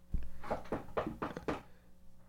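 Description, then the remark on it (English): A low thud, then five quick, evenly spaced knocks on a door, sharp and fairly loud, with no voices over them, followed by a brief quiet tail. “I mean, maybe if he knocks on the door, he might come in.”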